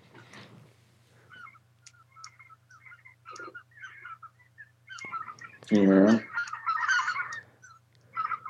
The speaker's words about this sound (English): Yeah. I'll give you a hint. It's more than one bird.